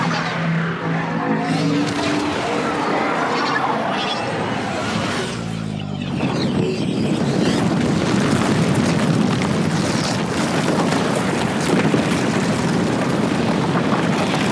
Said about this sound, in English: Not quite as at the beginning and not quite as intense as the seismic charges, but we do have the coaxium heist gone wrong, coaxium explosion, where they basically blow up a mountain.